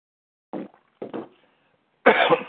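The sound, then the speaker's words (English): A person coughs three times with short pauses between, after swallowing wrong: the first two quick and dry, the last a louder, harsher, longer cough. “Excuse me, swallowed wrong.”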